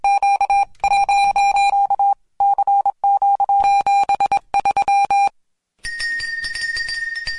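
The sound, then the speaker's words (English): Morse code beeps: a steady mid-pitched tone keyed on and off in short and long pulses with brief gaps, followed by a sustained, higher-pitched tone at the end. No one speaks. “We're going to give you some Morse code.”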